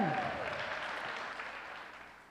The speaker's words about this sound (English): Let's do a round of applause for the worship team.